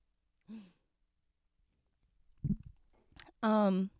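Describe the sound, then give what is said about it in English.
Someone sips a drink: a soft gulp and a quick click of the lips, then a loud, satisfied exhaled "ahh". “I'm going to take a sip of my hay, y'all, for a second.”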